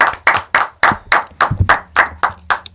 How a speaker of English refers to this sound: Let's clap it up for …. Clap it up for the …. BMA 2016 Producer of the Year.